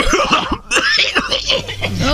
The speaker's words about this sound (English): Was that uncomfortable? I was triggered a little hearing people coughing.